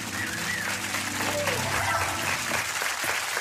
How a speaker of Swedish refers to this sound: Hörrni, nu tar vi och ger en applåd till våran kocka här idag